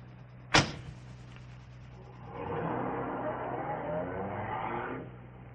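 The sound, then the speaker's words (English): A car: a sharp thump like a door shutting, then after a pause the engine starts and runs steadily for about three seconds before cutting off. No one speaks. “Come along, bring your bag. The car's right here.”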